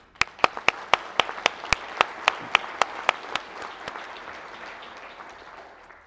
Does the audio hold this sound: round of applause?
yes